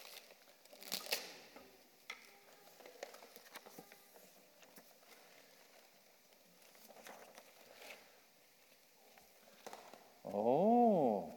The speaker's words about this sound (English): Okay, let's take a big present from here and open it and see what we have got.